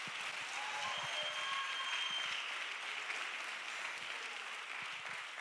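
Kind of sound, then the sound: crowd, audience clapping hands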